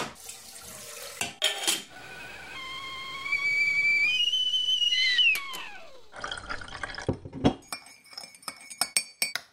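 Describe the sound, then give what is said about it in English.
A kettle whistles shrilly for several seconds, rising in pitch before sliding down and cutting off, followed by a clatter of cups and crockery clinking. “Okay, let's go put the kettle on.”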